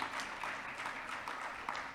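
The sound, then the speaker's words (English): An audience claps for the women who have gone before the speaker, a steady, dense wash of overlapping handclaps, fairly soft and continuous for about two seconds with no voices standing out. “That woman, all the women, let's clap for all those that have gone before me.”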